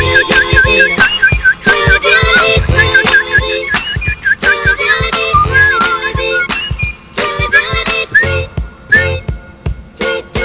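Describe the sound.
A person whistles a quick, chirpy imitation of robin birdsong, with bright warbling notes repeating in short bursts and trills. The whistling is loud, running steadily for about ten seconds with no talking.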